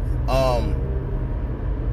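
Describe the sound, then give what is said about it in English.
A steady, low rumble of car interior noise while driving in traffic, constant throughout, with a brief burst of voice near the start. “Bad idea to do this while I'm driving in traffic.”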